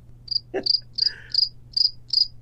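A cricket chirping sound effect: a steady, regular rhythm of about seven bright, high pulses over a couple of seconds, with a faint low hum and a brief soft noise near the start.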